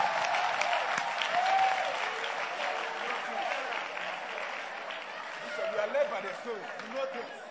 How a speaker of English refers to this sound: Are you clapping your hands for Jesus, somebody?